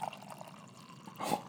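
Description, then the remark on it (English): Coffee pours into a mug: a steady, gentle liquid trickle that swells into a brief louder splash near the end, with no talking. “All right, here comes some ASMR coffee pour into the mug.”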